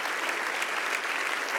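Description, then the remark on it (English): An audience claps their hands in steady, dense applause as a declaration of faith that God will do the work, a continuous crackle of many overlapping claps at even loudness with no talking. “And if you believe that tonight, let's clap our hands tonight as a declaration of faith that God is going to do the work.”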